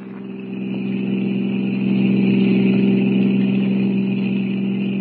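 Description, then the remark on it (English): The engine of a blue roadster car drones steadily and loudly on a highway, swelling in the first second and then holding a constant, even pitch while cruising at 90, with no voices. “Passing over the Blue Roadster, he drops down on the highway a mile ahead of it.”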